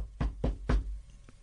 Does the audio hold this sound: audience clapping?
no